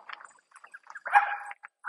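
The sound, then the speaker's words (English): A Jack Russell terrier barks and yaps at deer in a quick, irregular string of short outbursts, including one longer drawn-out bark, outdoors during a walk. “My Jack Russell is barking at the deers.”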